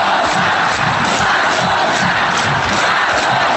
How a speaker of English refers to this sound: why are this crowd shouting